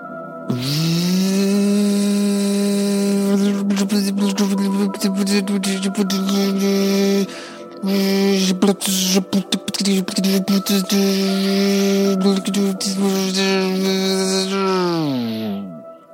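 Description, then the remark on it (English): A blender motor whirs steadily for about sixteen seconds, its loud hum broken by choppy grinding bursts as pineapple, banana and strawberry are churned into a smoothie, then winds down at the end. No one speaks. “And I'm going to blend it up for you right now. He puts the fruit in. Here we go. Blender.”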